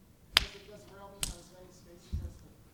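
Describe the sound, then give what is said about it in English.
A BrailleMe 20-cell braille display's cells refreshing all at once, heard as sharp snapping clacks: two crisp, bright ones about a second apart, then a duller, lower thump, with no talking. “The BrailleMe will sit there and wait for a second and do all the refreshing at once, and so instead of a little crunchy noise, you get a nice bam-bam noise.”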